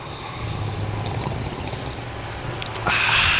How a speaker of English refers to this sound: All right, San Francisco, on the count of three, let's all take a sip of coffee together, kick off this Thursday right. Ready? Mm-hmm. 1, 2, and...